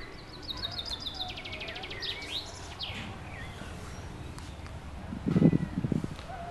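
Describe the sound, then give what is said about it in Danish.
Outdoor birdsong with quick, repeated high chirps and trills, strongest in the first few seconds and fading later, over a soft ambient background with a brief low rustle near the end. “Nu kan man så høre fuglene.”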